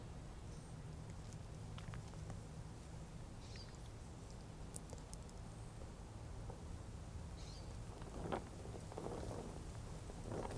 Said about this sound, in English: Rains return and the wind blows. Even the most ancient trees stir in autumn's force.